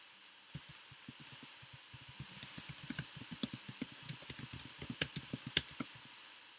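Rapid, forceful keyboard typing: a dense run of sharp, clacking keystrokes that starts after a brief pause and builds in loudness, with irregular bursts and no voices.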